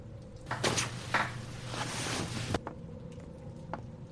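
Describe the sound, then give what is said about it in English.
A front door is pushed shut by a person with a sustained creaking, scraping rush of about two seconds ending abruptly, followed by a few soft clicks and knocks of the latch. No voices. “rises, stumbles, half asleep, towards the door, and pushes it closed.”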